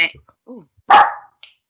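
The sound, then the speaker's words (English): The speaker's dog, Sierra, lets out one loud, sharp bark, preceded by a few brief murmuring sounds and followed by a faint short yip. “My dog agrees.”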